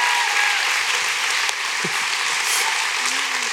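A crowd claps steadily and loudly for several seconds, a dense, sustained wash of many hands with no pauses and no voices standing out.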